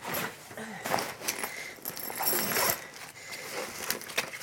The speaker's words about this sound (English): I like the rustling, listeners. This is me actually getting it out.